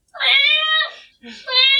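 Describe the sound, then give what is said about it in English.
A voice imitates a cat for the character Niv jumping out of Jolene's cloak, giving two drawn-out, nasal meows with a brief breathy pause between them, fairly loud. “Niv's gonna jump out of Jolene's cloak and start meow!”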